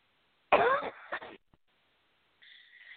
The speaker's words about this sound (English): I apologize. I didn't realize that when I started talking, it made me cough the most.